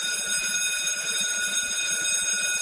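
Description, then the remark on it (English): A school bell rings without pause, a steady, bright metallic ring with a buzzing edge that holds at one even loudness from start to finish, with no voices over it. “If you've been following us since the beginning, you are about to hear a school bell for the 701st time.”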